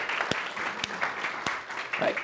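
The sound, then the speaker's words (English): An audience breaks into a round of applause for the 98 people serving at Life Change, a dense steady patter of many hands clapping at moderate loudness, with a few sharper individual claps standing out. “Let's give us just a round of applause for all those, right?”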